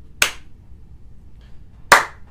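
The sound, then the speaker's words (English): A slow clap for a friend: two sharp, loud hand claps spaced well apart, roughly a second and a half between them, with near silence in between and no talking. “Let's just give him a... slow clap.”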